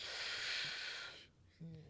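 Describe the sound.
A loud, close breath rushes into the microphone for about a second with a harsh, airy hiss, followed by a brief pause and a short voiced murmur.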